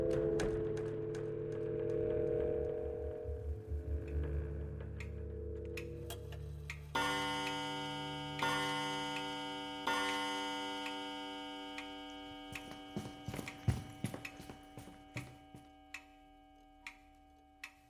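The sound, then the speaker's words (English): A grandfather clock ticks steadily while deep, resonant chimes ring out at regular intervals and hum as they fade; sharp ticks continue toward the end, with no voices. “It's the grandfather clock.”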